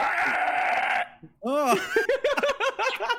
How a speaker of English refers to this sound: All right, here's a capybara bark, apparently. Oh, no. So gross.